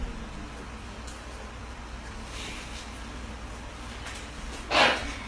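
A single sharp sneeze bursts out near the end, during a church sermon, a brief loud hiss standing above a steady low hum and background noise. No one speaks.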